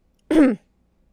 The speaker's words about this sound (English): In that moment, I'm clearing my throat because I've been screaming.